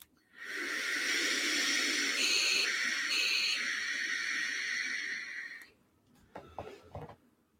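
A long, steady airy hiss of air pulled through a vape's airflow holes while the fire button is pressed and one airflow opening is covered with a finger, lasting about five seconds with slight shifts in tone midway, then a few short breathy puffs afterward.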